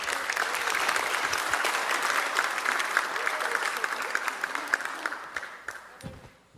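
An audience at Forest Lake Seventh-day Adventist Church claps steadily in dense, sustained applause for several seconds for a pastor, the Director of Pastoral Care for Florida Hospital South, with a few louder individual claps standing out before it thins and tapers off at the end.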